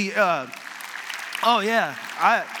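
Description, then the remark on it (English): A church audience applauds in a steady, hissing wash of clapping while a man's voice speaks over it in three short bursts. “I hope you're clapping for yourselves”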